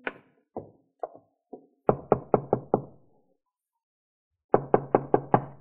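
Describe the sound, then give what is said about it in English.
Knocking on a wooden farmhouse door by a traveller standing on the porch, with no voices: four lighter, spaced raps, then a firm rapid run of five, a pause, and another quick burst of five. “It took a few moments to rouse anyone, but finally the door opened, and there stood a woman.”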